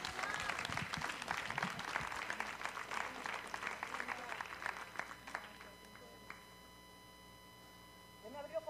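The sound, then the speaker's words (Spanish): An audience claps loudly for the Lord in a dense, steady burst of applause that thins out and fades after about five seconds, leaving a quiet background with a faint sustained tone. “Y dale ese aplauso fuerte al Señor.”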